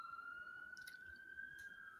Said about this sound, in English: Ambulance is really excited about it too out there.